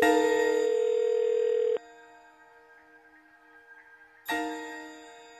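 A phone line rings out with a loud electronic ringback tone on a call to the San Fernando Modeling Agency, two buzzing rings separated by a short, quieter pause, heard alone with no voices.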